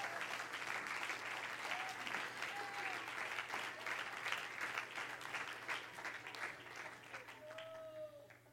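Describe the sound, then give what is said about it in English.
A standing church audience at Grace Church claps hands to the Lord steadily and loudly throughout, a dense continuous wash of applause with scattered cheers and brief vocal whoops rising above it. “Everybody stand and clap your hands to the Lord.”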